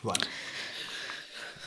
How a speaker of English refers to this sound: Why are we both coughing? Someone burning chilies.